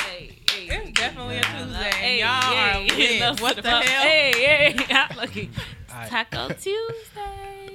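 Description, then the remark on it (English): Several sharp hand claps ring out in an uneven rhythm, mixed in with voices talking and singing excitedly over them, lively throughout. “Clap it out.”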